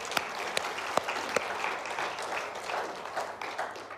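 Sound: church audience applauding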